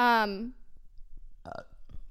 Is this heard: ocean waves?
no